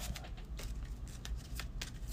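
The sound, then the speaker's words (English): Playing cards being shuffled back into a deck, a series of quick papery riffles and slides repeating for about two seconds with a steady low background hum and no talking. “Shuffle this back.”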